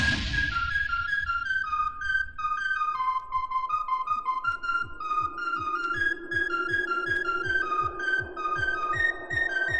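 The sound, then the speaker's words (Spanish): A clear, bright whistled melody glides up and down over a backing track with a steady, thumping beat, the whistling loud and up front throughout. “¡Qué recuerdos el tema del silbido!”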